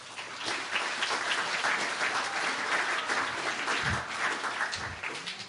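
A crowd applauds steadily, a dense wash of many hands clapping at an even loudness for several seconds, with a few low thumps and faint voices underneath.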